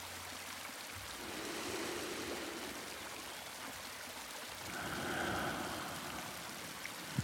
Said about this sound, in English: I listen to the trickling waterfall and its constant patter of droplets falling into the larger body of water.